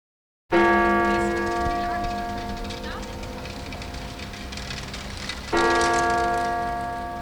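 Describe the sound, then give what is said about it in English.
The large church bell of the Westerkerk in Amsterdam tolls the hour twice, each deep, resonant strike ringing out with a long, shimmering decay, heard loud over faint outdoor city ambience at the corner of Prinsengracht and Rozengracht. “The bells of Amsterdam's Westerkerk toll another hour past, another hour to come.”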